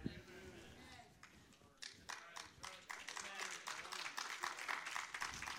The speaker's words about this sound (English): That's like a library or a golf clap. We're not really sure if we should applaud.